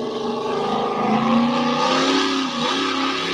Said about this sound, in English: Yeah, it's one of our local pullers here with a 613 naturally aspirated Chevrolet big block in his mini.